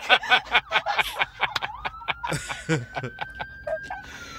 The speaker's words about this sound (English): And again, ambulance.